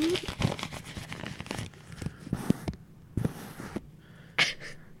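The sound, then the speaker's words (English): Paper being crumpled and unfolded, a run of dry crinkling and rustling bursts that start and stop irregularly, with one sharper crackle near the end and no talking. “Well, I guess let me check my future paper.”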